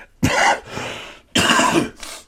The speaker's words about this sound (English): Then the streak continues with the cough. I almost had it.